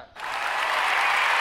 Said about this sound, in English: What the fuck is that? It's a crowd cheering.